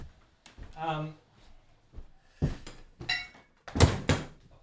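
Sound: door being closed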